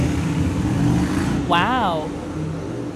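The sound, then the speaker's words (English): A motorcycle engine rumbles steadily outside throughout, loud, with a brief wavering voice-like tone rising and falling over it near the middle. “I'll just wait for the motorcycle. Got a lot of motorcycles.”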